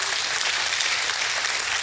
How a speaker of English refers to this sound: Give God a hand clap of praise this morning.